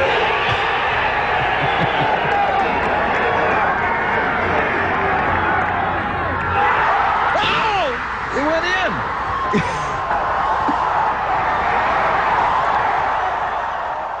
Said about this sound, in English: It's just incredible. Oh my God. It was just in the crowd there in Phoenix just went berserk, and you know, it felt so good to have that happen at that big social event